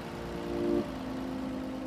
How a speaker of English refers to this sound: A truck arrives with raw material at the factory.